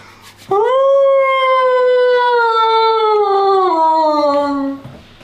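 One long, loud wolf howl, the departing call of a wolf pack as it turns and leaves, rises sharply, then holds a steady tone for about four seconds, sliding gradually lower in pitch before fading out. No one speaks.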